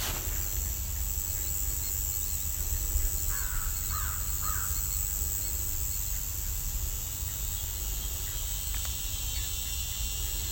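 An American crow gives three quick caws, standing out over a steady, high-pitched drone of crickets and insects that continues throughout.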